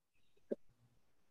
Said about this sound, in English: I burped.